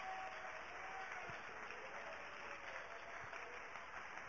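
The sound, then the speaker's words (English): An audience claps their hands to the Lord in a steady, dense wash of applause that holds at an even level throughout, with no voices standing out above it. “Let's clap our hands to the Lord again.”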